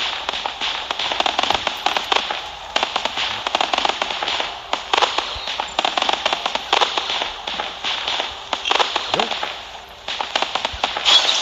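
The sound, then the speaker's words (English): Steady, dense crackling and rapid popping of fireworks set off on a portal, continuing at a fairly even loudness throughout, with a brief spoken word over it. “Now, if I try to put another set of fireworks on that same portal.”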